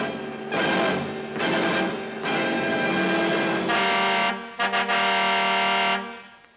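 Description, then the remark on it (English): A loud car horn blares in a rhythmic pattern of long and short honks, sustained blasts broken by brief gaps, dominant with no talking. “You just heard the powerful engine and demonic horn honking pattern of the car.”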